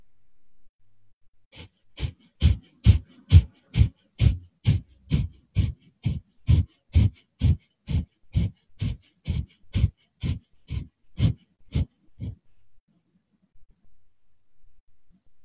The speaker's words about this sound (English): So you should notice that pumping action happening in the belly. It's a fast pumping action. Start as slow as you need to. And you're just breathing in and out through the nostrils, equal inhale and exhale. Just keep going.